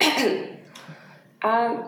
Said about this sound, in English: Yep, clear your throat.